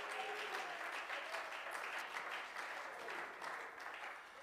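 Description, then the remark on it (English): A crowd claps together in praise one morning, sustained dense applause, many hands overlapping into a steady roar of clapping for several seconds. “Well, let's clap our hands and praise him this morning.”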